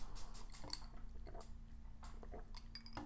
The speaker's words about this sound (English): Let me take a sip of this.